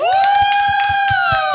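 An audience cheers and applauds: a loud, sustained whooping cry rises and holds over quick, steady clapping that keeps going throughout.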